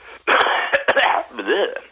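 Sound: cough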